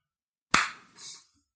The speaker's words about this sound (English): It's hand slaps. You got it. Hand slaps are the name of this game.